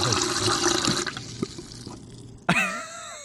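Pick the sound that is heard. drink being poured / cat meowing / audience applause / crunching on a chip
drink being poured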